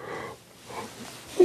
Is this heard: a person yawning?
yes